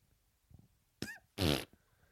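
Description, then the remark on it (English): A person imitates a goat sneezing: a short breathy, slightly voiced burst followed by one loud, explosive, sputtering blast, with no talking around it. “Okay, I'm going to make the noise. So this is me sneezing as a goat.”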